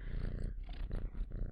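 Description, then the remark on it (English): A female cat purrs steadily, a low rumbling buzz that swells and fades in rhythmic cycles with each breath, with no talking. “Oh, someone is here and she is purring.”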